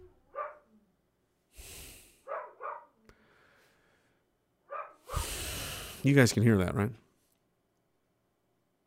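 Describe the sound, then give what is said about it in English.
A dog barks in a few loud, rough bursts, ending with a longer yelping, wavering cry, while a person briefly speaks in between. “That dog works for Circulon.”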